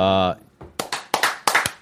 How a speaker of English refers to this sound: A big round of applause.